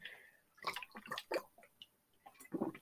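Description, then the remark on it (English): Someone takes a swig of water: a few quiet, wet gulping and swallowing sounds in an irregular sequence, with no talking. “Excuse me, I gotta take a drink.”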